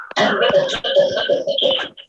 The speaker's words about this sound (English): I am practicing social distancing coughing, cannabis coughing. I cough into my shirt. See, it's a Santa shirt with a Santa hat.